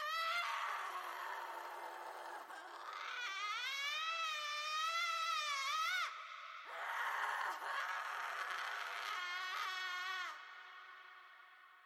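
A woman screams in long, sustained, wavering cries that rise and fall in pitch, with a brief break before the shrieking resumes, loud and close with no other voices.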